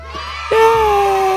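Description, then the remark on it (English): A voice imitates excited kids cheering: after a brief murmur, a loud, drawn-out, high-pitched whoop starts suddenly and holds steady, sliding slightly downward as it trails on. “Insert generic kids cheering here.”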